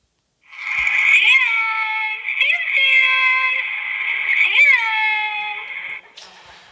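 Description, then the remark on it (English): A woman's recorded voice, played from a robotic cat feeder and recorded on a phone, calls to a cat in a long, drawn-out, sing-song call, its pitch sliding up and down in a few swells, loud for about five seconds before cutting off. “She recorded her voice, and because I love all of you and I want to embarrass her, I've recorded right here on my phone my wife's voice calling to her cat from this robotic cat feeder.”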